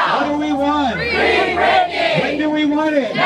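A crowd at a singer's movement rally, dressed in pleather pants and a singer's old concert tees and circled up, chants "Free …! When do we want it? Now!" in unison with rising and falling shouted phrases, loud and rhythmic, repeating in a call pattern with cheering voices layered underneath throughout.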